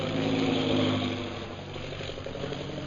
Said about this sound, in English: That is one of our new bombing planes, now arriving for establishing our Purple Triangle Kingdom.